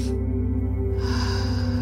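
A long, deep inhale drawn in through the nose during a guided breathing meditation, rising in the second half over a steady, low sustained musical drone; no one speaks.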